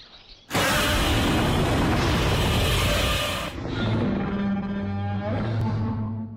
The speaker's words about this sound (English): But it just does kind of just end, and we get that kind of Godzilla roar at the end, and he runs off. I'm gonna make that happen. I'm gonna punch those in together of Tarzan going to roar, and it's a Godzilla roar.